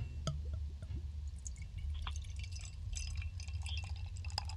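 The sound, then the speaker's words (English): Spaten Optimator Doppelbock beer from Munich pours steadily into a glass after being opened, a soft continuous gurgle with bright fizzy crackles and small splashes, fairly quiet, with no one talking. “That's opened up. And here comes the pouring.”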